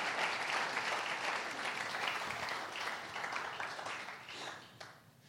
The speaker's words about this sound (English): Would you guys give them a huge round of applause?